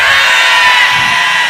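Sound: audience shouting amen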